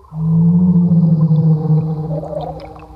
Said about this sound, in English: People are sending them in on their phones. I don't know how great this audio is going to come through, but Mosasaurus, aggression level high.